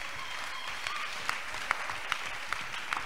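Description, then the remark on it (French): An audience claps for the Lord in a steady, dense wash of applause, with a few sharper individual claps popping out above the crowd noise throughout. “Let's clap for the Lord.”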